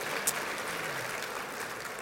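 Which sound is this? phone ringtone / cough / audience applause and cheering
audience applause and cheering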